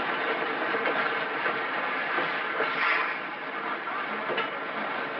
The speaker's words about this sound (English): Tonight's file opens outside the small shack that serves as the railroad station in a Midwestern farming town. A lone man stands on the platform watching the noon train from the city arrive.